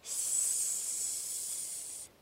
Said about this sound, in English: Once, as she was sleeping in the woods, she heard a hissing noise, like a steam radiator.